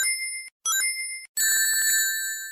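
Bright, high electronic chimes ring out in three quick bursts, the last a shimmering cascade of overlapping tones that slowly fades: the ring-collecting sound from the Sonic video game.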